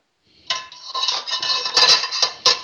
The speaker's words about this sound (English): In our bowl, we're going to add our pasta. So I'm just taking it right out of the bowl. We've drained it because it was in our locking lid pasta pot. Okay, there's our pasta in the bowl.